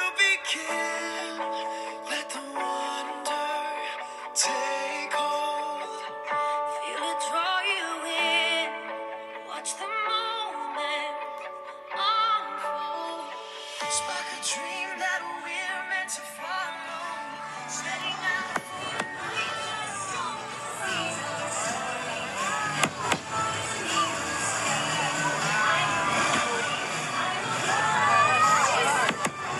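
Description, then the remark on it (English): Tonal, music-like sounds give way midway to the dense, steady murmur of a large crowd of about 10,000 people filling a venue as the lights dim, with scattered voices and occasional sharper calls rising out of the din. “I'm in a crowd, but somehow I'm all alone with my memories.”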